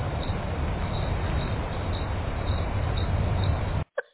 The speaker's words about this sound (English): Yeah, that's crickets. Go ahead and ask Karen Fan about the audit, and that's the answer you get. You get the crickets, right?